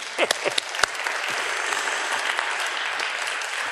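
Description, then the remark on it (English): An audience applauds steadily, giving God a round of applause after a reading of the Beatitudes. Many hands clap into a dense wash that starts with a few distinct early claps and then holds at an even, sustained level. “Let's give God a round of applause on those.”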